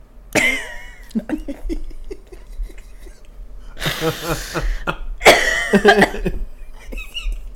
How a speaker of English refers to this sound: That was a funny one. Just dry-ass coughing. She was like, I'm holding it. I can't no more. It's just, like, coming up, you know?